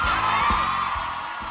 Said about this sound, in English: Oh, yes, thank you, thank you. I just love this virtual applause. It was fantastic.